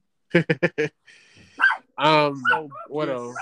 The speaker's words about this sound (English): You're such a badass guard dog, but you're like 2 foot.